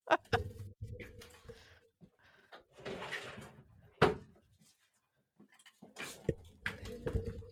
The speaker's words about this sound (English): I gotta close the office door. Okay, close the office door.